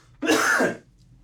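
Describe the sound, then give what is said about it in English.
A single short, harsh cough bursts out, rough and breathy, then drops off into quiet with no talking around it. “Sorry, I'm coughing.”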